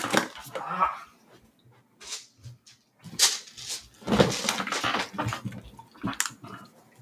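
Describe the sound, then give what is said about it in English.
Dice clatter and rattle in a series of sharp, irregular bursts, loud and scattered across several seconds, with brief pauses between tumbling rolls. “And then I need to roll dice real quick.”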